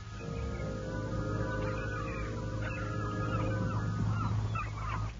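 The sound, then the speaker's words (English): Harsh, overlapping gull cries screech repeatedly over a steady low rumble, a noisy flock calling throughout with no one speaking. “And then there were the screeching seagulls.”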